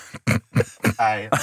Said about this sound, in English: I've cursed you with coughs. The cough curse.